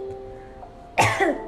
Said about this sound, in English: I kind of developed a small cough because I had very chilled, you know, orange juice an hour back, which is why my voice sounds weirder than usual.